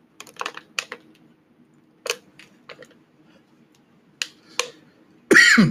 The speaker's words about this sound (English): Oh Lord, water in there, the wrong pipe, y'all. God, I'm about to die. Hold on. Y'all, that water went down the wrong pipe. I was sitting up here about to die.